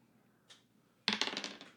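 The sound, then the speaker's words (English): A single die is dropped and clatters across a hard surface in a quick run of bright taps that fade out, with one soft tick just before. “So yeah, go ahead and roll me.”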